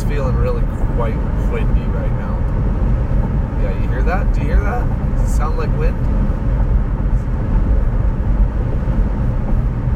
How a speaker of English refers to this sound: sounds like wind to me. Yeah, there's a bunch of mountains or hills or whatever at the side of me, and they sort of, it was more wide open there. I think maybe where it was more wide open is where it got significantly windier.